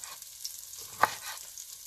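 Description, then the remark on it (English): Vegetables sizzle in a 12-inch frying pan with a steady, bright hiss and faint crackle, broken once midway by a short, sharp clatter. No one speaks. “And now I'm grabbing some different veggies here, sticking them in my pan.”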